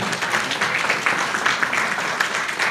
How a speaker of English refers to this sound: We've already had dinner, which, again, Chelsea Free Methodist brought all our dinner, made all our dinner today. Would you give them one more round of applause?